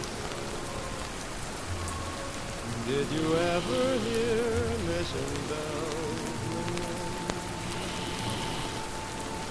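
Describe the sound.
Steady night rain patters down in a constant, hissing wash, as Marvel-themed ambience of Bucky Barnes' Brooklyn apartment, while a man sings a slow, crooning melody with soft instrumental backing over the top of it.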